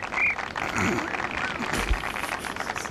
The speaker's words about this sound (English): Why is the whistle sound effect a cricket? That's like the opposite energy from what a whistle.